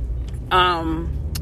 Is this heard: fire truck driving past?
yes